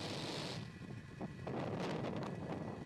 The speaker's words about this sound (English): Engines full power. And liftoff of Starlink 2-4. Go Falcon, go Starlink.